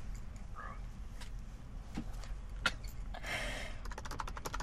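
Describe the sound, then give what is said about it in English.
Soft, irregular clicking of typing on a computer keyboard, ending in a quicker run of keystrokes, heard fairly quietly over a low background hum with no one talking. “I don't even know, but all I can hear is typing.”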